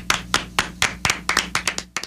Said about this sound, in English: We're done with the applause.